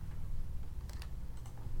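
A few sharp, fairly crisp computer mouse and keyboard clicks come in two quick pairs over a steady low hum as someone looks up a man's name, with no one speaking.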